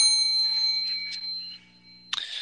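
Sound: bell ding sound effect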